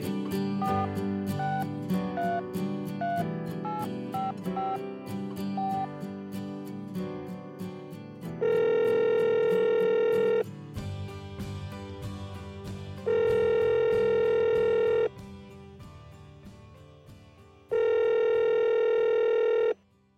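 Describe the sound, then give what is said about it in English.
A telephone line tone, as a phone call to a guest is dialed, sounds in three long, steady bursts of about two seconds each, evenly spaced, over a continuing music bed; no one speaks. “Let me pick up the phone, we'll dial him, and here we go.”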